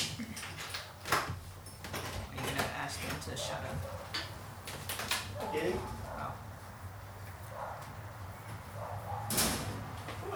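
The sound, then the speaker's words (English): A dog barks several times in short, irregular bursts, mixed with thumps and clatter like doors or drawers, over a low background hum. “Barking. Bark. Dog.”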